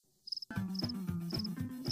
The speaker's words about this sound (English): The crowd goes silent, except for a cricket that was still chirping.